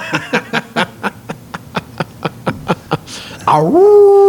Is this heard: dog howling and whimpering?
yes